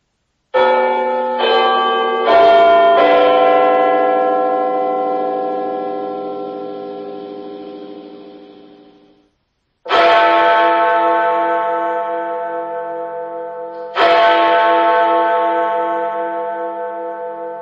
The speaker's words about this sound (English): So it's called Big Ben. You'll have to go and enable it in the skill section of the app or website as per usual these days. And then you can just say, Alexa, open Big Ben.